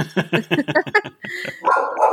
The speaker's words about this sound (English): That's Carmen. Say hello, Carmen. She's a really scary doodle dog.